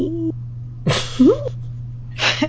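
A cat gives a brief, rising-then-falling meow, framed by short breathy bursts of noise over a steady low hum.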